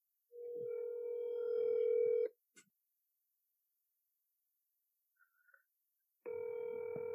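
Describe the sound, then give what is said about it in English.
Ringback tone of an outgoing phone call: a steady electronic ring lasting about two seconds, a long silent gap with a faint click and brief beeps, then the ring starts again. No voices. “Yep, it's going to be phone tag.”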